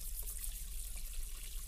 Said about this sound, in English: My dad stands next to me, slowly drying every plate I hand him. The running water means I can't hear to talk to him.